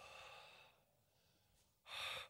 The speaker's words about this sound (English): Do this for yourself. Put your hand in front of your mouth real quickly. Now breathe.